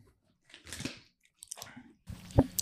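Crunchy chewing of seafood flavor potato chips in a few loud bursts with brief pauses between, crisp crackling bites and no talking.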